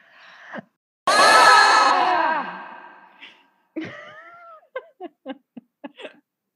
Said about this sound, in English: Let's just scream on three. Okay. One, two, three.